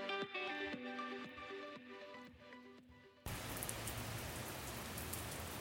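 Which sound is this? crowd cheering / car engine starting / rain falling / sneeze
rain falling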